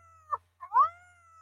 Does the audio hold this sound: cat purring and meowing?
yes